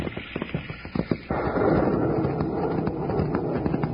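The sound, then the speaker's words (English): A few sharp, scattered cracks and taps, then rain abruptly begins in the United States, just across the border from Mexico, settling into a loud, steady, dense hiss that continues to the end with no voices. “The minute we get back in the United States, it starts to rain.”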